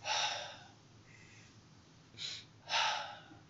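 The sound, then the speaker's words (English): A person's breathy exhale opens, then after a pause a quick, sharp nose sniff is followed right away by a longer, louder puff of breath out through the mouth. Dry, with no talking. “Just a little sniff. And then I exhale through my mouth.”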